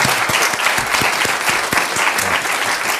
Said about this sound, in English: And then it's so perfect the way they all start clapping for it.